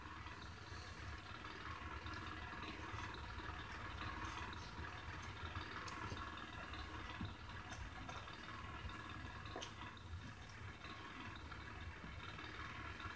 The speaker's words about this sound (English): It's like trying to yell and scream over this loud ass generator.